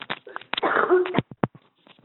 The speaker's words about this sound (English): Excuse me, I'm just getting over the flu. I thought I'd make it through without coughing. Pardon me.